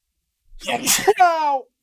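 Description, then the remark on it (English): A single loud sneeze: a breathy, noisy burst that ends in a short voiced, almost sung tail, then silence. “It's a sneeze.”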